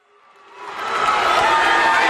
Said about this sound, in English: … briefly has a little trouble making himself heard over the roaring crowd.